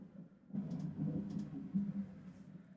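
A low, rolling rumble of distant thunder swells in after a brief quiet moment and carries on steadily, deep and muffled, with no voices present.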